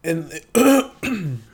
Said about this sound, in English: Yeah, I just fucking clear my throat.